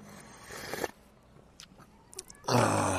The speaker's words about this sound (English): I will make you listen to another sip of coffee.